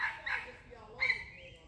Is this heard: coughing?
no